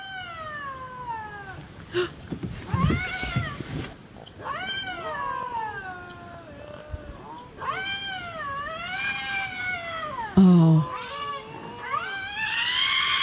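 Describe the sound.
A bobcat's mating call: a run of loud, drawn-out wailing yowls that rise and fall in pitch, repeating with short pauses, with a brief voice exclaiming near the end.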